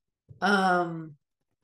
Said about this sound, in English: Dog is snoring. Dog is snoring. We're up late.